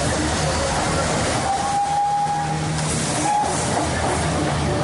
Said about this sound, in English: Steam train pulling in. The last time I rode a steam train in India must have been 80 years ago.